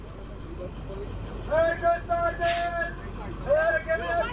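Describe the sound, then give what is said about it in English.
The first bus pulls up and stops with a low engine rumble and a rising whine, then a short hiss as its doors open, and the whine resumes. “Oh, the first bus is coming up there now. The bus is pulling up. It has stopped. The doors are opening.”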